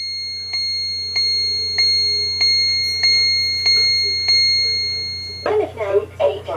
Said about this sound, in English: All right, you can hear several of my clocks going off.